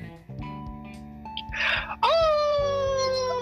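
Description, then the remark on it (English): A loud, drawn-out howl swoops up sharply and then holds, sagging slowly in pitch, over steady background music with a low pulsing beat. A brief breathy rush comes just before it. “Can I get a howl?”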